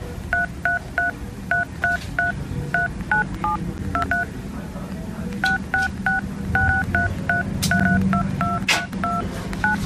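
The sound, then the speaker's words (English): Jingle Bells picked out on phone keypad tones, a steady run of short two-note beeps in a bouncing rhythm, clear over a low background hum, with no talking. “I mean, this was me having a go at it earlier, showing that it is possible to play Jingle Bells on your phone keypad.”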